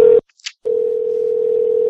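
A steady, loud telephone dial tone hums continuously during an outgoing call. It is broken once by a brief gap with a faint high blip before the tone resumes and holds to the end.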